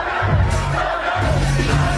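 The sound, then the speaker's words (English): A loud, dense party crowd roars continuously, with cheering and excited voices blending into a steady wash of noise throughout, at a party in Vegas with Travis and Chiefs quarterback Patrick Mahomes, Travis dancing and hyping up the crowd. “Travis was the life of the party, dancing and hyping up the crowd.”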